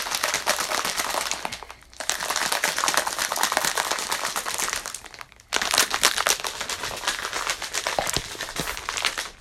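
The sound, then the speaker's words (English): Ice cubes in cold water rattle hard inside a shaker in a fast, dense clatter, three loud bursts of shaking broken by two brief pauses, with no voices. “Oh, these ice cubes are melting fast, even in cold water.”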